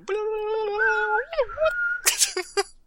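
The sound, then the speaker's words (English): A voice imitates bird sounds: a long, steady, reedy tone that wavers and glides in pitch, then breaks into several short, sharp squawking bursts before fading. “Bird sounds.”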